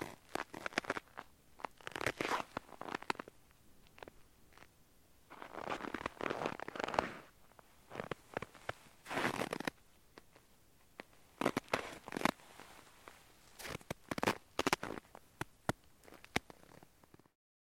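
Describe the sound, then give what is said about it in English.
Footsteps crunch across crusted snow in an uneven series of gritty, crackling bursts, some sharper and louder than others, broken by short pauses. No one speaks. “Sometimes a crust will build up to produce a crunchy quality, or even several crusts separated by layers of powdery snow, giving variations of dissonance with each step.”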